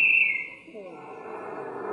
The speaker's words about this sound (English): Trailing with only minutes left on the big clock. And then the final whistle blew.